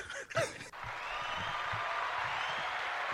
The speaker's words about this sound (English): Love the applause.